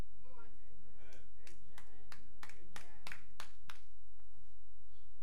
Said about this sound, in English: Some three people clap.